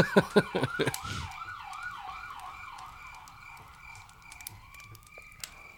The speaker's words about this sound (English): Always a siren out on the plains while we're sitting around a campfire.